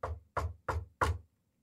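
Four firm knocks on a door in a steady, slightly quickening rhythm, each a solid hollow thud, clear with no voices, followed by quiet.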